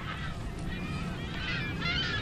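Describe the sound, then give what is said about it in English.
A large flock of gulls doing courtship behaviors on a salt pond levee near Fremont, San Francisco Bay, call in a loose chorus of harsh, overlapping cries that rise in bursts, set against a steady outdoor rumble like wind or traffic, with no talking. “So up ahead, there are some gulls doing some courtship behaviors on the levee, which is definitely a bad sign.”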